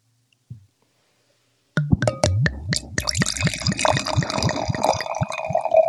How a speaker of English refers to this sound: Go ahead, pour your next glass of wine.